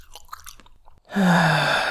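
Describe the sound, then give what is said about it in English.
Someone crunches on M&M's candy with quick, irregular bites for about a second, then lets out a loud, sustained breathy groan with a low voiced hum. “Here, eat some M&M's before you shoot steam out your nose.”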